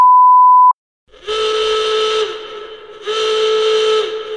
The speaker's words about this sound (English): I gotta sound the alarm!